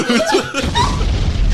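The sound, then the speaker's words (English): A burst of laughter gives way to a loud explosion sound effect, a deep booming rumble that swells in and sustains heavily to the end. “Hit the explosion, my guy.”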